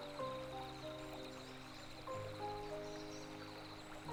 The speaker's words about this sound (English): The droplets dancing a dance as they hurtle down the path that it has cut out for itself. The millions of drops of water that make up this active and fascinating brook bubble and dance away until out of sight.